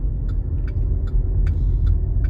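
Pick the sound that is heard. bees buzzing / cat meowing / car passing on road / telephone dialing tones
car passing on road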